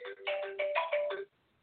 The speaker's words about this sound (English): I usually remember to silence my phone before the show. I forgot this time.